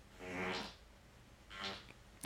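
A recorded fart, made in bed just after waking, sounding like the intro to the film Jaws: two low, buzzy blasts about a second apart, each a short droning rumble, together forming an ominous two-note pattern, clear, with no voices.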